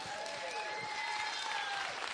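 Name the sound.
audience applause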